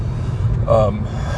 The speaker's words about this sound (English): Sorry. Only you guys, I swear. Maybe I don't swear, but I promise. I don't yawn any other part of my day except when I'm on this phone talking to y'all.